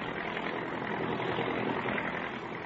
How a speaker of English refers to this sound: Her face is marked with 88 years of living, but her sharp little eyes are alive with excitement as she peers out the window of a giant transport roaring out of the Omaha airport westbound on a night flight.